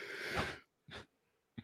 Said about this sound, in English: how professional of me just to yawn in the middle of my answer.